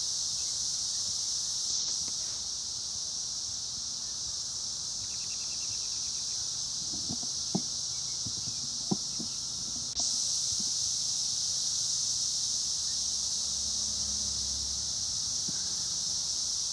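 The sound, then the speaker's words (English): A loud, steady drone of cicadas buzzes without pause throughout, a dense high-pitched hiss that swells slightly near the end, with a few faint low knocks underneath. “The cicadas coming up like voices of the dead.”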